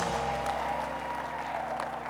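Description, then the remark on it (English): A church audience claps their hands in a steady, dense wash of applause during a sermon, with sustained musical tones humming underneath and no clear speech. “Come on, clap your hands and scream like I'm talking to you.”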